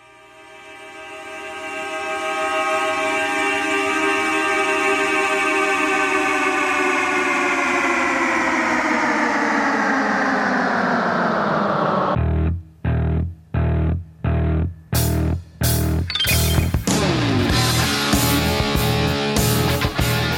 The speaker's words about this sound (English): That's super creative. I never knew that those were car horns. Me neither. I don't know what I thought it was, but that's great.